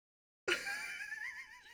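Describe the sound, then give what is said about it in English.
A voice imitates a man's strained half-cry, choking and crying at the same time: a sharp gasping onset after silence, then a wavering, quavering whine held for over a second, fairly loud. “And he's like choking and crying at the same time.”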